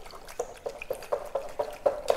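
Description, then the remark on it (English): Quick, steady whisking of 2 eggs, about 160 milliliters of water and sugar in a bowl, producing a rhythmic series of light, wet clinking strokes roughly four per second with no talking. “And I'm just going to whisk this all together”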